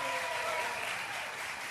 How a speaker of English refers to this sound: Plenty of seating, and so we invite you to come on down and join our in-studio audience. Let's a nice round of applause for our audience today.